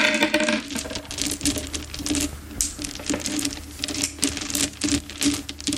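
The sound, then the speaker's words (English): A steady, rapid clatter of dice rattling and tumbling across a hard tabletop, with dense overlapping clicks for several seconds and no voices. “Dice, baby. Where'd you get these?”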